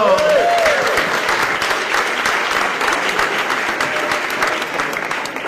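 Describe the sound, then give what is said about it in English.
A crowd bursts into loud, sustained applause for Charlie Fersko, dense clapping with a few whoops rising at the start, steady throughout. “Ladies and gentlemen, clap it up for Charlie Fersko!”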